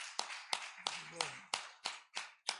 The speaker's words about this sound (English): Let's give a hand clap unto the Lord today. Hallelujah. Thank you, Jesus.